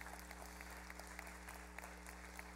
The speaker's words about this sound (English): Yeah, we should clap for that. That's an amazing thing.